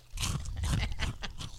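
Chewing of crunchy snacks from a snack crate, with a steady series of loud, crisp crunches repeating about every quarter to half second. No one speaks.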